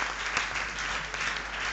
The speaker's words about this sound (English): Ladies and gentlemen, please a round of applause for Dr. Peter Arthur.